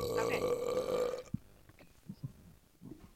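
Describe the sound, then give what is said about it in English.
A long, loud, drawn-out burp with a rough, resonant drone lasting over a second, followed by quieter scattered sounds and faint murmuring. “No, that's burping.”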